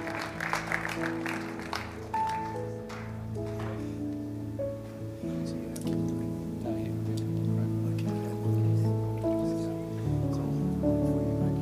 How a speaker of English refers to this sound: Let's give you a big hand for that.